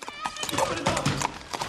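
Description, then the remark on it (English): Horse hooves clip-clop in a steady, uneven rhythm, loud, in a film scene set at the San Gennaro feast with Andy Garcia on the horse, with indistinct voices and a busy background layered underneath. “Andy Garcia on the horse is like, Zaza, and he kills him like that.”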